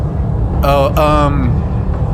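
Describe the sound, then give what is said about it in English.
A steady, deep spaceship engine rumble drones throughout, loud and unbroken, with a short tonal, voice-like whine rising above it midway before fading back into the low roar. “Listen to that spaceship. That must be a destroyer.”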